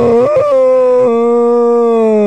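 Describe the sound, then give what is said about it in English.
A person imitates a whale call with a loud, sustained moaning tone that wavers and rises slightly before holding steady for about two seconds, with no other sounds. “But I do a whale.”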